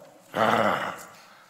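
A dog gives a short growl, a rough rumbling snarl that swells suddenly, holds for about half a second, then fades into quiet background noise.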